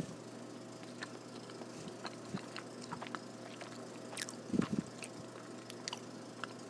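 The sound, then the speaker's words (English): Soft, sticky chewing of the last piece of fudge, with wet smacking and squishing in an uneven rhythm and a louder burst of mouth noise near the end. Quiet overall, with no talking. “eating fudge and drinking water, not necessarily in that order”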